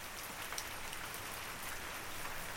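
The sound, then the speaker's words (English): Steady rain pours down, a dense, even hiss of countless drops with faint scattered patters, continuous, with no voices or other sounds. “I would actually consider the rain to be one of my simple pleasures.”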